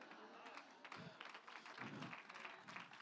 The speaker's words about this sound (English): Notice the clapping wasn't as loud in this one, because there's some of us don't have the real Holy Ghost in here.